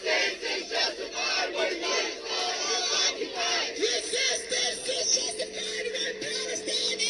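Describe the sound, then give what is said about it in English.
A large crowd screams and yells together in a street in Chicago, a dense, continuous roar of many raised voices, with shrill cries surging and overlapping throughout and no clear speech standing out. “I mean, can they do anything but scream like demon-possessed banshees?”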